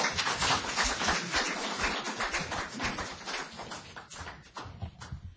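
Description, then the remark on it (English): An audience at a public meeting breaks into sustained applause for a speaker, a dense, steady patter of many hands clapping at once that holds for several seconds before thinning slightly near the end. “He was an outlier, but he also received applause.”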